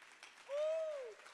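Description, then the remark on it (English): An audience claps hands in a steady, moderately loud patter, while a single sustained voice tone swells and fades over the clapping midway through. “Oh, jump to your feet and clap your hands and say, God's going to sustain me there.”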